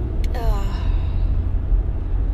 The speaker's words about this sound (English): Ugh. Whew, here I go again, guys. Yawning again. Ugh.